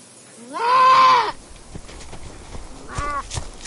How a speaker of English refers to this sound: Anyhow, that's when I first heard a goat screaming out in pain and fear, and I knew something different was going on.